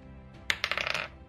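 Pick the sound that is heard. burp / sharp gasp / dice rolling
dice rolling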